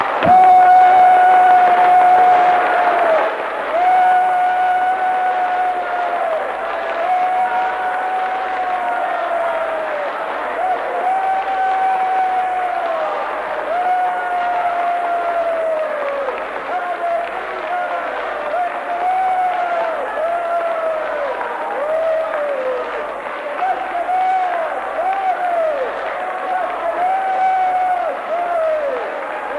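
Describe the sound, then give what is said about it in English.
An audience claps and shouts praise together (glory, hallelujah, amen, praise the Lord), a loud, steady wash of hand claps under many overlapping raised voices, with sustained shouted cries that rise and fall for about thirty seconds. “Now, everybody in this room, let us shout glory, hallelujah, amen, praise the Lord, and clap our hands.”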